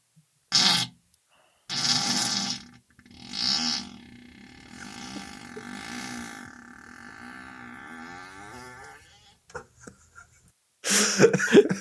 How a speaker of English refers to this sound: Steve, you're correct in thinking that it was me and my ass farting